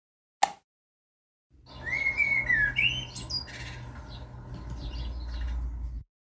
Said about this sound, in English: you'll spot that it starts with the joyous sound of a singing blackbird.